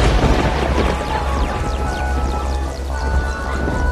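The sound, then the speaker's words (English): Loud, continuous rumbling thunder booms beneath a dense, busy wash of noise, with faint descending whistling tones streaking across the mix for the whole few seconds. “And the carnival immediately begins, gradually mixing rain, thunder,”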